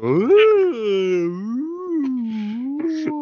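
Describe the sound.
A person makes a long, wavering whale call with their voice, a continuous tonal moan that swoops up and down in pitch for several seconds, with a few brief breathy clicks near the end.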